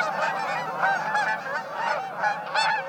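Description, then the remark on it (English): A flock of Canada geese honks continuously, overlapping nasal calls coming in quick, uneven bursts at moderate loudness, with no one speaking. “As V-shaped flocks of geese fly south, millions of Canada geese migrate each year.”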